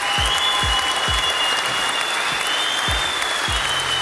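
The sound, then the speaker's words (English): Steady, dense applause from a crowd fills the whole stretch at full loudness, with a few deep thumps recurring underneath and a faint high whistle-like tone drifting across the top. “Ava DuVernay, she deserves a round of applause as well.”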